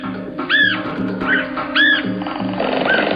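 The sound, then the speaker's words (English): A red-headed woodpecker (Melanerpes erythrocephalus) gives four harsh, rising-and-falling calls at an uneven pace, the last one fainter, over a steady low hum and background noise. “You may have figured out by now that the common name of Millinerpes erythrocephalus is red-headed woodpecker.”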